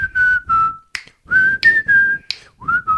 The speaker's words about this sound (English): You're good at whistling and snapping. I can whistle and snap at the same time. Really? Oh, yeah. Let's hear it.